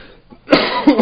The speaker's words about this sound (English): Yeah, I'm coughing. You okay there? Yeah, sounded like you're dying a little bit. You know, try to go down the wrong way, that's all.